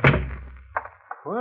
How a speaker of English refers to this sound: But no, there he is, right on the dot of 8. And you breathe a sigh of relief as you open the door.